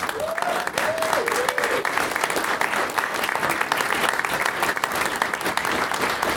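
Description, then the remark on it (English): An audience of Mantic fans at an evening event claps in a sustained round of applause for the Pathfinders, a dense, steady wash of many hands clapping at constant loudness, with a brief high vocal whoop or cheer near the start. “I'm sure we'll give them a big round of applause.”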